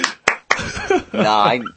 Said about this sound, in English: He's clapping.